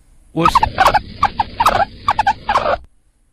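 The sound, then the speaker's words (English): A guinea pig squeaks in a rapid, burbling run of short chirpy notes, loud and warbling for a little over two seconds before stopping abruptly, with no talking. “That's a guinea pig.”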